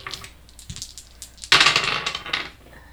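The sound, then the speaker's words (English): Dice clatter and rattle across a hard tabletop for a notice roll in a tabletop game: a few light clicks first, then a louder burst of tumbling that skitters and settles over a second or so. “See, this is helpful, the dice that have the...”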